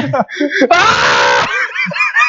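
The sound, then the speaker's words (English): Several voices yell and shriek loudly into microphones, with one long, harsh scream in the middle framed by shorter, wavering cries and yelps. “Yell at them.”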